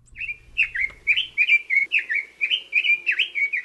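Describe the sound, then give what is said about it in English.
A red-billed leiothrix, a non-native bird living in Hawaii, sings a rapid, continuous run of bright, warbling whistled phrases, clear, with a faint low rumble early on and no talking. “Red-billed leothrix are one of the prettiest non-native birds that live in Hawaii.”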